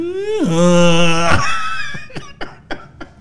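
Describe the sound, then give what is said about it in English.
A voice imitates the THX deep note: a loud, buzzy sung tone glides downward, then holds a low sustained pitch for about a second before breaking off into several short bursts of laughter. “Next thing you know, you hear the fucking the THX. You hear the THX.”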